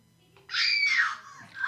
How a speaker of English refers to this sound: We don't have any eagles. I'm sorry, but we do have women screaming.